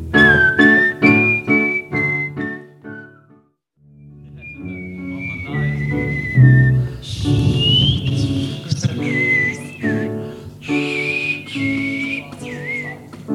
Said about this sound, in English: laughing at the sound of his breath on the mic as he whistles.